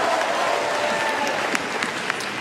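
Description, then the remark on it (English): An audience claps for the Lord together in steady, dense applause, a continuous wash of many hands with a few sharper claps standing out, sustained without any talking over it. “Give the Lord another great hand clap.”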